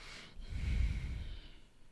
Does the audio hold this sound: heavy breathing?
yes